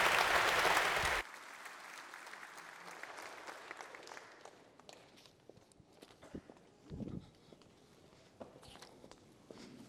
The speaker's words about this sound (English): would you indicate so with a round of applause? Congratulations. Thank you.